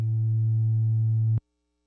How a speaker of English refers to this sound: I don't know what that was, but got a hum.